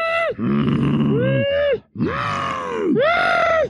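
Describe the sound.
A human voice imitates angry cows: three long, loud, low mooing groans, each swelling and bending in pitch, delivered back to back with only brief breaks.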